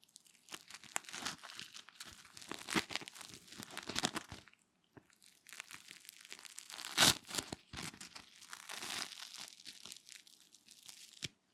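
Fingers rub over crunchy toast, making dense scratchy crackles in irregular bursts, with a brief pause midway and a sharper crunch shortly after. No one speaks.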